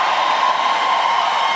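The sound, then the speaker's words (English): An audience shouts and cheers with joy, giving the Lord a shout, a dense, steady roar of many voices that holds at full loudness throughout, with no single voice standing out. “Oh, come on, somebody give the Lord a shout.”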